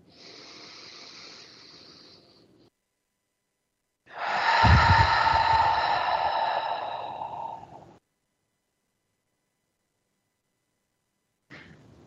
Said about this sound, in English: Breathing in.